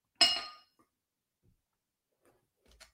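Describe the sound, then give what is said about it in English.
A pint glass of drinking water, an Everton football club glass from Goodison Park in Liverpool, England, gives one sharp clink that rings briefly and fades, followed by quiet and a fainter small knock near the end. No one speaks. “I'm drinking water out of my, it's probably hard to see with the light and everything.”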